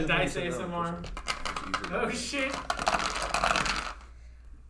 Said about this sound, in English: Some dice ASMR.